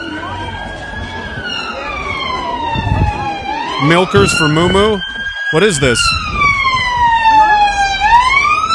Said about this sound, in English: Let's just get... listen, move out of the way. The ambulance has to get to another mass stabbing. Get out of the way.